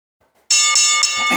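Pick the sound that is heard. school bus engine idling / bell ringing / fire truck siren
bell ringing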